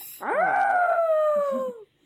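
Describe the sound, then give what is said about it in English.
A person's voice imitates a howl for the Howling Tempest power, like "ow!": one loud, sustained tone lasting about a second and a half that starts abruptly, then slides slowly downward in pitch before cutting off, with no other talk. “Yeah, that's not really much like a howl.”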